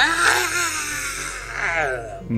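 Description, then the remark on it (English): A man lets out a long, wavering scream, imitating someone falling off a roof. The loud cry slides up and down in pitch and breaks off abruptly after a couple of seconds. “Can you give us a scream”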